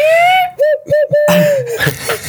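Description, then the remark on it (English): A person imitates an owl hoot with a long, clear, high-pitched whoo, then a few short choppy hoots, ending with a longer, breathier wavering hoot. The sound is fairly loud, with no speech. “Okay, I can do an owl.”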